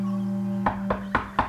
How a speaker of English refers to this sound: I groaned when the first knock on the door came, but then remembered the package I had to give to some person I'd never met before, and I realised I couldn't simply ignore the knocks.